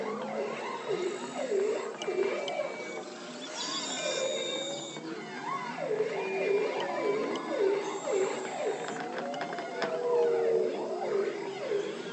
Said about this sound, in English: And the trills of bearded seals, the knocks of walrus, and even the high squeaks of belugas. And in listening to these different sound sources, sometimes they all occur at the same time.